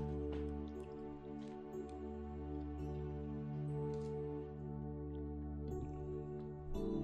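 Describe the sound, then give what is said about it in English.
Someone takes a few quiet sips and swallows of water, soft wet gulps and a small clink-like click, over a steady low hum with no talking. “Take a drink of water really quick.”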